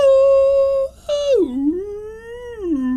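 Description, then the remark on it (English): A person doing a dog impression: a drawn-out, whimpering howl, fairly loud, holding a high note, breaking off briefly, then sliding down into a lower, wavering whine with no talking. “So it's a sort of dog impressions thing as well as a dance thing.”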